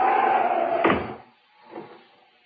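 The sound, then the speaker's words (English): A door closes with a single firm thud over a steady background rush, followed by a softer, shorter knock or settling sound a moment later. “I shut the door.”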